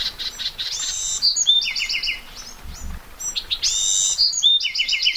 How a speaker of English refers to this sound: A Buick's wren buzzes, then breaks into exuberant song.